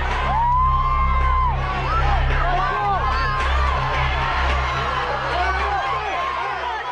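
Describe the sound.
A large crowd of fans cheers and shouts continuously and loudly, many overlapping voices whooping and cheering an entertainer's name as he dances, while a steady, thumping musical bass line from a song runs underneath throughout.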